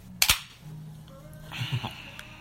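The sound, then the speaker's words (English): A drink can is cracked open: one sharp, loud pop at the start, then a soft, steady hiss, with a few faint clinks and rustles about a second later. “As I open my next.”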